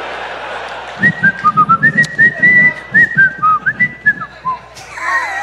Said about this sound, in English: Why'd you go straight to whistling?